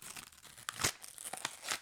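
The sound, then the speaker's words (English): A paper snack wrapper being torn open, a series of short crisp rips and crinkles with a louder tearing burst in the middle, no voices. “Ooh, that's a satisfying tear.”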